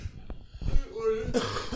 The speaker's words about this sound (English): Wow, that was a strong yawn. Sorry, fam.